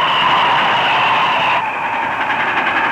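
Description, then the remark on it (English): A loud train headed for Valley Ho rumbles past, a dense steady roar with a grinding mechanical edge that shifts in tone partway through as it goes by. No voices. “Looks like the train headed for Valley Ho. Well, hello, train. And goodbye.”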